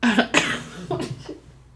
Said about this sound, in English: And God, I just coughed so loud. Sorry.